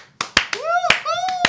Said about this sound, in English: Let's clap it up.